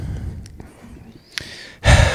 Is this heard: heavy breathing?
yes